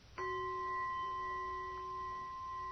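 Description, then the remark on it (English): A single meditation bell is struck once and rings on with a clear, steady tone and bright overtones, sustaining at an even loudness with no voices present. “You hear the sound of the bell.”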